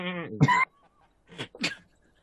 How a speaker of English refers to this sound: Sassy sheep.